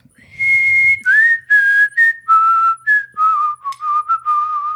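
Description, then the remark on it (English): A person whistles a quick tune, a string of clear, bright notes stepping up and down in short phrases, loud with no talking over it. “Are we getting a whistle? All right. Yes, we are.”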